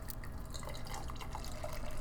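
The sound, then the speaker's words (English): Beer, a sour IPA called Mind Bullets, pours steadily into a glass, a continuous gurgling, splashing stream of liquid lasting a couple of seconds with no one talking. “Second of all, you're pouring one.”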